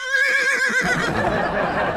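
A horse whinnies loudly, a shrill, quavering neigh that trembles for under a second before dropping into a rough, breathy snort-like tail.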